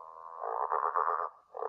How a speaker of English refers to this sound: And Trevor thinks, oh, if I can get out there, she'll recognize me and she'll take me to Neville. And so he croaks really loudly and...